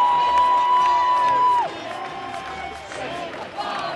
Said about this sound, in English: As the final siren sounds, the crowd erupts, and the year that was comes to an end. Essendon winners by 24 points.